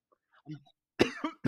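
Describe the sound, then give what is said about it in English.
A quick burst of three harsh, loud coughs in close succession, preceded by a brief soft breathy sound, with no talking. “Like, well, I'm about to go into a fit. Okay, that's fine. Well, you cough, I'll talk.”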